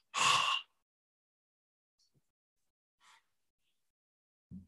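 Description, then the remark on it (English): A single loud breath pushed out in a short rush of air near the start, as a person breathes out during a guided breathing exercise, followed by near silence with a couple of faint soft rustles. “And now we're going to breathe it all out.”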